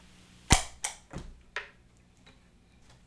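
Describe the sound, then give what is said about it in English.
A sharp, percussive guitar stab runs through a tape echo, followed by three or four repeats that fade steadily, each a little softer and duller than the last. No one speaks. “So here's the tape echo version.”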